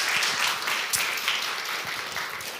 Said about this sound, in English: Can you guys give them a round of applause for being here? Thank you guys so much.